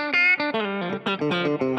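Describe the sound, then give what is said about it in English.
An electric guitar with a humbucker pickup, coil-tapped to select one of its two coils, plays a quick run of bright, slightly distorted notes, fairly loud, with no voices. “you're able to tap it where you can choose which coil you use”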